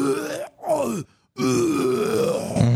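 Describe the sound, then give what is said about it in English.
A voice imitates retching using false vocal cord distortion, with three rough, gravelly groans from the throat, each strained and distorted like vomiting, separated by short silences, the last one long and sustained. “So that is actually a distortion that we get on the vocal cords, but also we can use our false vocal cords.”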